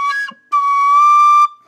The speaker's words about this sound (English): I have all of the holes covered on the penny whistle, and I slightly cover the tip, the exit up to get one lower note.